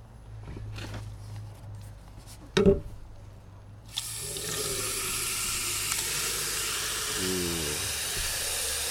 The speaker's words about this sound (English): Let's do 2 more, because I'm probably gonna do at least 4 gallons of water. And then, let's dilute this in some water.